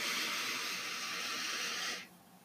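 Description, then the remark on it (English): A single deep inhale during a guided breathing exercise, a steady airy rush of breath drawn in for about two seconds, fairly loud, then cutting off abruptly into quiet. No one speaks. “Breathing in value.”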